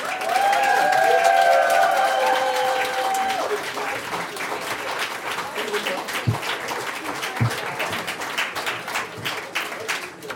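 A crowd claps steadily for about ten seconds, with high whoops and cheers over the applause at the start before the clapping eases slightly and carries on, as a spoken word performer comes back to the stage for her final piece.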